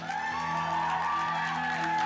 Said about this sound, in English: So give her a round of applause.